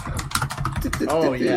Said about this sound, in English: You know, for a robot, your clacking is awfully... Real robots get mechanical keyboards.